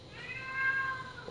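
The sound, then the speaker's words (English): A single drawn-out meow from a female pet cat, high and tonal with a rising-then-falling pitch, followed by a brief low thump or rustle at the very end. “When you have a dog, you don't have to deal with, you know, meowing of cats.”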